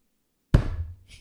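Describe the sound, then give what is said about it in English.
A single heavy thud of a hand slamming down on a table, loud, with a low resonant body that rings out and fades over the next half second; no talking. “Sorry, that was me slamming the table.”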